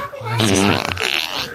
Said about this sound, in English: Okay, opening a box of farts. Oh, snap. You better open a window. Why would you say, oh, snap? Sorry, welcome to Big Fart. Would you like me to fart?